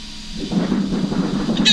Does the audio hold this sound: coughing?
no